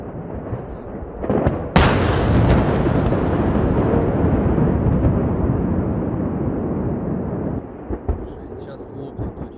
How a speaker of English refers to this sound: That is the sound from an eyewitness video on YouTube of a large explosion at the Nonoska missile test site in the Arkhangelsk region.